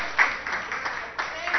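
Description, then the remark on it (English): An audience claps their hands together, a dense, continuous patter of many claps with some voices mixed in, lasting under two seconds at a moderate level. “Clap your hands.”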